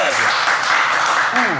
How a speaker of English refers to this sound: Yeah, clap that shit. Do a Nori clap. Yeah, clap.